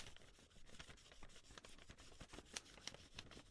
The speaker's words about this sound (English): And I just lie it on top and then take a pencil and then just rub it and do a rubbing. Just like that.